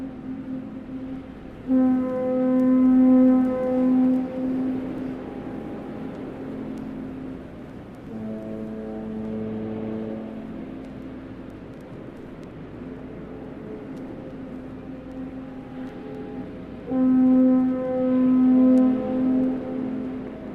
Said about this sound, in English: The piece is called Landscape Sculpture with Foghorns. When I first moved to San Francisco, I became fascinated by how the foghorns from the Golden Gate Bridge could travel long distances around the bay.